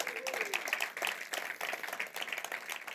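An audience breaks into steady applause, a dense patter of many hands clapping at moderate volume throughout, with a brief rising whistle-like tone near the start.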